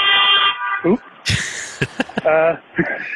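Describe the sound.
A car horn gives one steady, blaring honk lasting about half a second as someone pulls into a driveway, followed by a brief sharp clatter and what sounds like indistinct voices.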